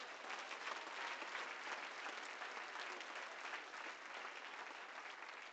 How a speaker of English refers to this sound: Come on, let's clap to the Lord right now.